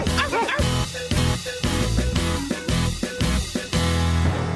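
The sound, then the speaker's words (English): A voice imitates a dog barking, giving a quick run of loud, rhythmic woofs and yips about twice a second over steady, full backing music. “Okay, next up is a dog. What's a dog say?”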